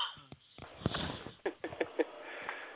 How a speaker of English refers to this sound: this thing is killing me, this little cough. I can't start a 5-minute conversation today without it coming up and just killing me.